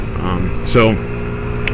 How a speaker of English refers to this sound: Like, naturally, my natural instinct is to talk over the engine noise, but then it just sounds like I'm screaming into the mic, because it only really picks up what I'm saying.